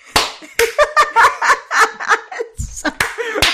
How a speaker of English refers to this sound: For some reason, the clapping's not working. One more time. I'm usually a very good clapper.